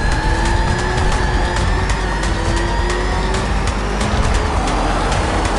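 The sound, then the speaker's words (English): The Batmobile's engine roars loudly and steadily as it speeds away in pursuit of an armored car, its whining tone shifting slightly, with scattered clatter and rushing road noise and no voices. “Before Batman can respond, the armored car pulls away. Batman jumps back in his Batmobile and speeds away in pursuit.”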